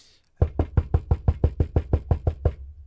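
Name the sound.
knocking on a door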